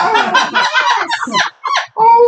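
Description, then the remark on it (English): A person voices a dog-like howl, loud and warbling, broken into a few wavering bursts with short pauses between them and a final sustained tone. “Oh, good puppy howl.”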